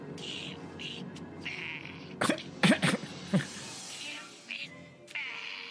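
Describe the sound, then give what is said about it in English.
A few quick, raspy throat-clearing bursts in the middle, fairly loud, over a steady background hiss with scattered faint noises. “I'm like, clear your throat.”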